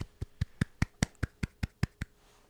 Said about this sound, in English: because I wanted to queue up just a quick little like round of applause sound after, I think, a pretty successful leak week.